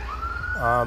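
ambulance siren passing by

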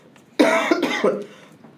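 cough

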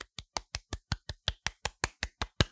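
one person clapping hands

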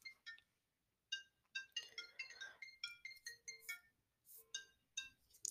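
mobile phone ringing

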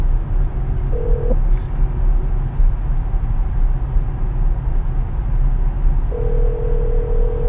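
telephone call ringing out

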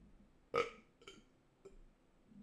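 burp

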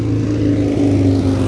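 motorcycle engine passing by

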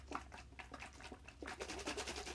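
person drinking water

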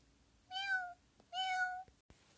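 many cats meowing

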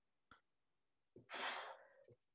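sneeze

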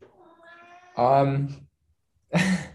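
cat meowing

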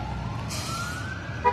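approaching emergency vehicle sirens

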